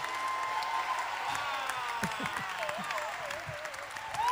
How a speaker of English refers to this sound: I know. I know you've been dying to put your hands together and make some noise. Celebrate the victory of Jesus.